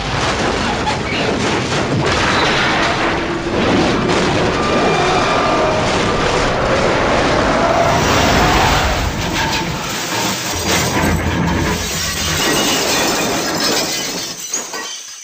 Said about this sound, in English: You did a great job holding this plane together during our crash landing.